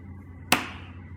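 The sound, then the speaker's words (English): One sharp, crisp hand clap, a sync clap for lining up recordings, snaps out over a quiet low hum, its bright burst fading away within a fraction of a second. No one speaks. “All right, let's do it. Sync clap, ready?”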